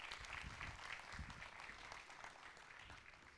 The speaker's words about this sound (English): Y'all give them a hand clap as they're being seated this morning.